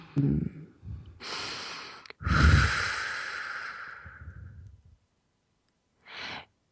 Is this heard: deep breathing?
yes